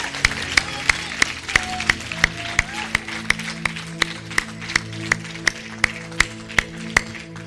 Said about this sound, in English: Come on, let's give these guys a big round of applause. Thank you, men.